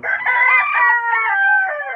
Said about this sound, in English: And these are some more egg-laying hens, and this is Raphael. He's the lucky dude. Actually, I was thinking these hens are pretty hens